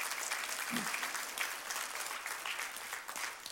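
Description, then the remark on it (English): An audience applauds a woman after her testimony, a dense wash of many hands clapping at once, sustained and fairly even throughout with no voices standing out above it. “Now let's clap for her. Give her applause.”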